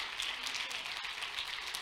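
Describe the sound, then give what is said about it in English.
A crowd standing on its feet claps to the Lord continuously in a dense, steady wash of hand claps, fairly loud, with no distinct rhythm and no speech. “If you're thankful for the blood, stand to your feet and clap your hands to the Lord with all of your might.”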